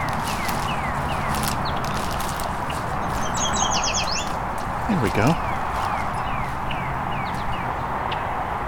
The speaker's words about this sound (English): See if I can get a good recording of our yellow warbler doing the sweet, sweet, sweeter than sweet song. There it is,